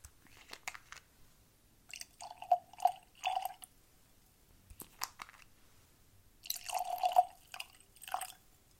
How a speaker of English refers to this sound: Glasses and tasting cards are ready. Let's get these poured and jump right in.